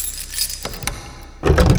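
Keys jingle and clink in short, bright metallic bursts, followed by a louder, fuller rattle of the lock turning as a woman unlocks a brown, unmarked door at the top of a stairway with a key taken from a desk drawer. No one speaks.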